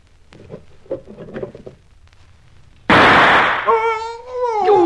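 Faint shuffling and tapping give way to a single sudden, loud gunshot with a harsh, roaring tail that only grazes a man, followed by a wavering, high-pitched cry.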